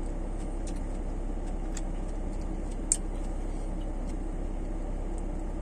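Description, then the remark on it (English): A car passes by outside, behind the speaker, a steady low road rumble filling the background with a few faint high clicks scattered through it, and no one speaking. “Car, not used to car passing behind.”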